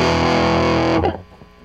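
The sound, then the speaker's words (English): A loud, thick electric guitar tone pushed through a fuzz pedal, buzzing and humming as it sustains for about a second before cutting off into a faint, fading tail. “That's dirty, dirty fuzz box.”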